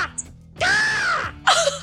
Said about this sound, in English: Birds.